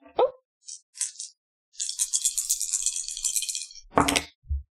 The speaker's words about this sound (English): So roll 4 dice and tell me what the highest number okay. is.